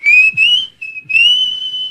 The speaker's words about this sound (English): Yeah, it'd almost be better to do no whistle. Because no one would ever whistle like that for a breaking ball.